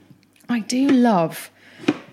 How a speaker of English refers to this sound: But what's going in next? I'm just roughly chopping the aubergine.